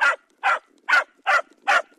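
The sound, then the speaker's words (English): A dog barks five times in a steady, evenly spaced rhythm, each bark short and loud, with brief quiet gaps between them and no talking. “Who knows what a bark means?”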